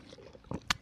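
A short run of wet gulping sounds from someone drinking: a soft swallow, then two sharper slurping bursts in quick succession, with no talking.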